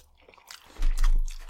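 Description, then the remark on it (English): Chewing noises from an empty mouth, a quick series of moist smacking and crunchy bursts that grow louder and denser in the second half, with no talking. “I like to chew with my mouth empty because of the, psych medication I'm on.”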